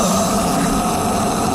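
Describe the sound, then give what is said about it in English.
A voice imitates a toilet extractor fan that comes on when the toilet light is switched on, with a steady, loud, breathy whirring drone that holds evenly for under two seconds without any words. “You know when you put the light on in the toilet, the fan comes on, and then when you switch the light off, the fan thinks, oh, hold on, you put the light off,”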